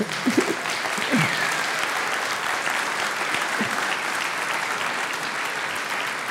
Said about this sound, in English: And yeah, if you're new with us, the reason everybody's clapping is because we give every penny away, 100% of that.